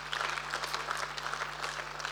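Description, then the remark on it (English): An audience in a church applauds the church's volunteers steadily, many hands clapping in a dense continuous patter at moderate volume, with no talking over it. “Come on, can we give them a round of applause?”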